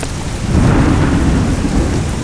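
A loud, steady thunderstorm: a deep, sustained rumble of thunder swelling after a moment, layered over a dense hiss of heavy rain, with no voices.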